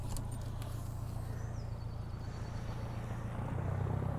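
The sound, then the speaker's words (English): The engine of a small ferry boat drones steadily with a low, throbbing motor hum as it leaves the island of Inchcailloch heading back to Balmaha, constant throughout, with no one speaking. “The little ferry boat's just taken off and heading back to Balmaha, and we were only ones there.”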